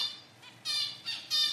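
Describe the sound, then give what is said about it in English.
A bird gives a distance call to a partner separated by a couple of metres: a harsh, nasal, bleating squawk repeated in three loud bursts rising in intensity, with no talking. “maybe it gets separated a couple of metres from its partner, and then it would do a distance call, which sounds more like meh”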